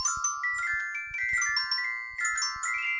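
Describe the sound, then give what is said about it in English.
A bright, electronic ringtone-style jingle plays alone: a quick melody of stepping synth notes over light, punchy percussion, clear and upfront for about three seconds. “Little known fact, Paul Walter Hauser is actually the person that was going to use that as his ringtone in the movie, but obviously it was in 1977.”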